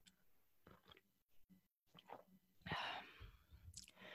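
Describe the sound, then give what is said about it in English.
A soft sip of hot coffee: a brief airy slurp, then quiet swallowing and breathing sounds, with no talking. “Sorry, I'm going to take a sip of coffee here.”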